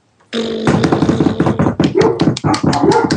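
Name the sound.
dog barking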